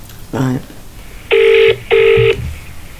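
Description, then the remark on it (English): A telephone line rings twice in steady, evenly spaced electronic tones, each lasting under half a second, after a brief voice-like sound at the start; the ringing is clear. It is a call to the 000 emergency number. “What I'll do now is I'll play you the phone call of when she phones 000.”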